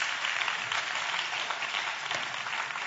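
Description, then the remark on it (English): A crowd claps steadily for a few seconds, giving the Lord a hand clap, a dense, even wash of many hands applauding together with no voices heard over it. “Give the Lord a hand clap if you did.”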